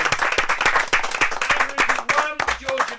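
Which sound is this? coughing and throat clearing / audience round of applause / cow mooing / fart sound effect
audience round of applause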